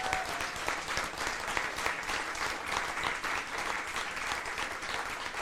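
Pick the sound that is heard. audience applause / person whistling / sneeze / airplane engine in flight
audience applause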